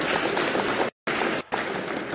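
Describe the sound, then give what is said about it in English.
A dense burst of crowd applause played as a sound effect, many hands clapping at once in a steady, loud wash, broken by two brief dropouts into silence before the clapping resumes. “Come on, where's the claps? We're not going until we clap for BTP.”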